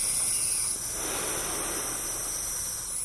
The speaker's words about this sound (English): Now, I inhale a salt water solution through a nebulizer for 45 minutes a day. It's one of my most important treatments, and I feel it when I skip it.